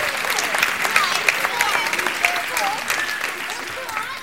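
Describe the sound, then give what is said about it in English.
An audience claps steadily for several seconds for the three trees, a dense, even patter of many hands with scattered sharper claps, while faint voices and calls rise through the applause. “Round of applause for our three trees, ladies and gentlemen, our three trees that gave it their all.”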